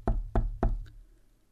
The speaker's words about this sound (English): He tapped a section of the wall with his knuckles.